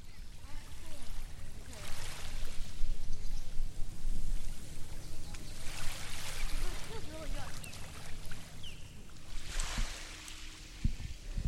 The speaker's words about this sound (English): Okay, here we are on the beach. Okay. What were you just saying about the tide? So the tide's coming up. So when the tide is out, if you look out here, we can get 10-foot, 11-foot tides out here.